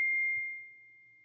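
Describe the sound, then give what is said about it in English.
A single bright phone text-message ding rings out with a sharp attack, then a pure tone hangs and slowly fades over about a second. It is fairly quiet, with no talking over it. “Sorry, that was my daughter texting me from school, where she should not have a phone and should not be texting me.”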